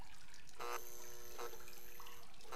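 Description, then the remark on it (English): Water sloshes and splashes in a few short bursts as a person who tripped over a gurney lifts their head from dirty water, quiet, with a faint dripping trickle between them and no voices. “I lift my head from the gross water.”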